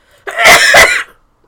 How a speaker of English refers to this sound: Sorry, I sneezed.